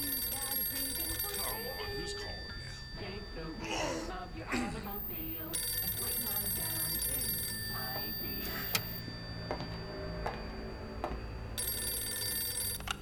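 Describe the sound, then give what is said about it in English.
A telephone rings late at night with a call from the mayor of Wildwood, New Jersey, repeatedly sounding bright, steady electronic tones, mixed into a busy, dense background of sound that continues throughout. “This is case number 431, the case of the Leviathan, and it began late one night with a phone call from the mayor of Wildwood, New Jersey.”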